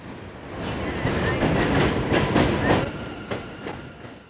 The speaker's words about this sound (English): A quick subway ride north takes us from East Flatbush to Crown Heights.